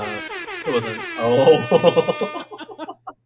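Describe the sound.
A loud air horn sound effect blares for about two seconds, its brassy sustained tone layered with voices, then trails off into a string of short choppy bursts.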